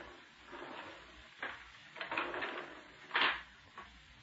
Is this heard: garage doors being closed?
yes